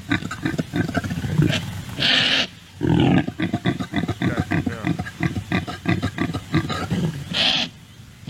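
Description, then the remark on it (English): Impala (African antelope) mating calls: a loud series of rapid guttural grunts and rasping roars in rhythmic bursts, broken by a couple of sharp, breathy snorts, with no talking. “Okay, we were playing Impala mating noises earlier on the show.”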